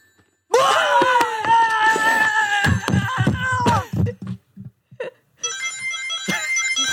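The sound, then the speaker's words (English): A video game coin chime plays from a phone speaker into a microphone: bright, tinny electronic tones ringing out, breaking into quick choppy blips, then finishing with a high sparkling chime. No one speaks. “This is my phone, by the way. I'm playing with Sonic coin sounds.”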